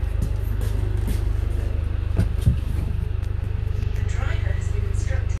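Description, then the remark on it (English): A steady, deep engine drone and road rumble fill the inside of a moving bus, unbroken throughout, with a few brief clunks and rattles and faint murmuring voices in the background. “I didn't be that narcissist who did a podcast on a bus, because that's just awkward.”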